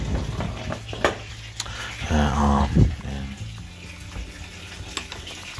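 Steady rush of water pouring from a tap, fairly loud, with brief clinks and a short muffled voice-like sound partway through.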